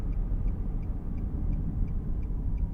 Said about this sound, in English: is driving her sedan.